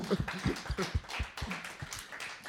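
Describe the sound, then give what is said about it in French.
An audience applauds a composer who has just introduced himself on stage, with quick, fairly even claps that keep a steady rhythm throughout the short burst, moderately loud, with no one speaking over it. “On applaudit.”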